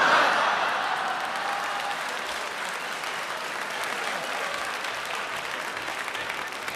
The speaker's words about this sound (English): Yeah, because it gets a huge round of applause.